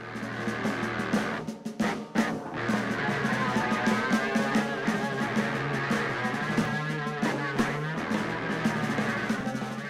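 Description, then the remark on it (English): A French horn run through a distortion pedal, sustained buzzy tones with gritty, saturated harmonics, loud and steady with a brief dip in the middle before the playing resumes. “But what if you changed how it sounds with a distortion pedal, like you might see used with a guitar?”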